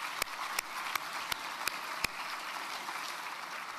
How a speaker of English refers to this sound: We're going to have to invest in our kids, invest in our youth, and that's how we're going to create a better future for all of us. We can clap at that.